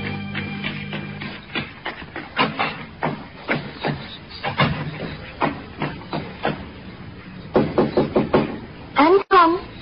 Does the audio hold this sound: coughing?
no